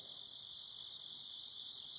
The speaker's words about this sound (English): The stars overhead twinkling, the sound of chirping insects in the night air.